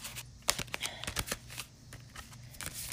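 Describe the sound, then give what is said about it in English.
A tarot deck is shuffled, a quick run of crisp, papery riffling clicks and flutters with a few sharper snaps, no talking. “Just shuffling.”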